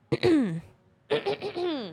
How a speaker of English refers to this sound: Yes, we're all coughing. We're all sneezing. ….